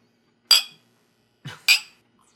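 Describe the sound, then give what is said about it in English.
Glasses of an Etrog-tini cocktail clink together in a toast, two bright ringing chimes about a second apart, with a soft knock just before the second clink and quiet in between. “Cheers, guys. Let's come to the center of the room.”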